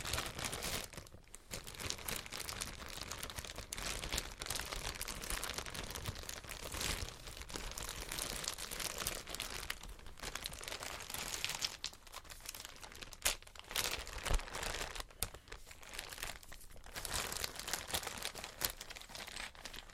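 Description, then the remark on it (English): Steady crinkling of a plastic bag holding small chess pieces, rustling continuously with brief pauses and sharper crackles, with no one talking. “So I keep the little pieces in a plastic bag.”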